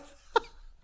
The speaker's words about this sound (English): Stop coughing.